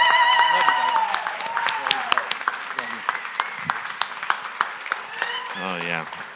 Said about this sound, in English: But, yeah, I just want you guys to give a round of applause and stand up and greet this guy. He's an amazing guy, amazing man of God.